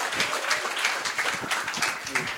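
A crowd applauds steadily, many hands clapping in a dense, continuous patter that fills the room at moderate loudness, with faint voices mixed in underneath.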